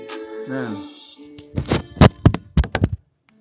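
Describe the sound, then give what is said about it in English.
A drawn-out vocal tone gives way to a quick, uneven series of about eight dull, heavy thumps as a Bible is slapped repeatedly against a hard surface, then silence. “Oop, that was a Bible thump.”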